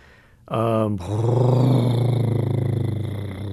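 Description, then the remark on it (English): A deep elephant rumble starts after a brief pause and drones on, loud, with a throbbing, slightly pulsing low tone that shifts pitch once early on. “By far, the most frequent kind of vocalization we call a rumble, which is very low frequency.”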